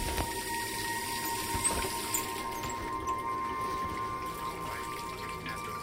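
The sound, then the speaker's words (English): Water runs steadily from a kitchen faucet, burbling and splashing into a sink already full, a continuous, moderately quiet gurgle with no voices. “burbling into an already full sink”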